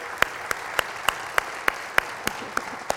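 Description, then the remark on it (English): Steady, evenly spaced hand claps, about ten sharp slaps in three seconds at a brisk even rhythm, with no voices and only a faint hiss between beats; a round of applause at Christ Center church for its departing student director. “And can we just give a big round of applause for the love.”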